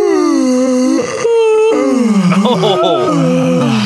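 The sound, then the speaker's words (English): A big, drawn-out yawn, loud, voiced like a long moaning groan whose pitch slides down and wavers before trailing off, with no talking around it. “Have you ever found yourself yawning only to have every other person around you start to open their mouth and just to let out a big yawn?”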